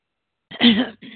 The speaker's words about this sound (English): Excuse me, I just had a coughing fit, so my voice is a bit weird.